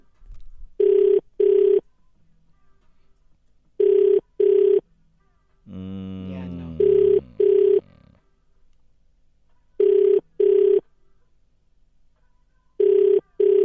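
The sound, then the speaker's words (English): An outgoing call rings unanswered, a steady double-pulse ringback tone repeating five times at even intervals, with a brief voice sounding faintly over one ring midway. “Pick up the phone”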